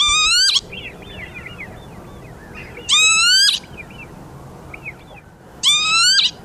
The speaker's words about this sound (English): And all the while, it's making this loud, shrill peewit, peewit, or kibitz, kibitz, if you're German, during the time that it's flying around in this odd, erratic fashion.